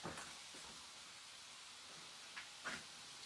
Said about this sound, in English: This is sizzling and it's sizzling loud. I'm sure the camera can pick it up.